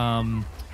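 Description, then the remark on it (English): A brief, steady squeaky creak from a door opening, loud, holding one pitch for under half a second before cutting off into quiet room tone. “Okay, so the door squeaky. There is a it does squeak.”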